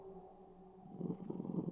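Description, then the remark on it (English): A puppy growls softly in its sleep: a low, rumbling hum that grows into a fluttery, pulsing growl partway through. It is quiet, with no talking. “But, oh my goodness, we got little sleep growlies.”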